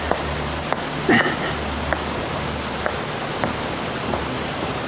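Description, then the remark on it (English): A steady rush of water fills the background while irregular small splashes and drips land every second or so, one slightly louder splash early on, with no voices. “If this is the water of life splashing about, a single drop might turn you into Methuselah.”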